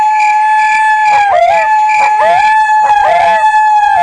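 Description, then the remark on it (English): Four coyotes howl together in a continuous chorus, their overlapping voices rising and falling in pitch with short yipping breaks, loud throughout. “That's four coyotes.”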